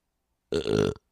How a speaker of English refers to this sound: I got bad burps today.